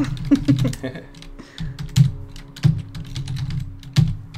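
Typing on a computer keyboard: a steady run of crisp, irregular key clicks with occasional heavier taps, fairly loud over a faint low background hum.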